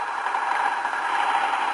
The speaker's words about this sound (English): And as you can probably hear, there's tons of fire trucks rushing to the scene.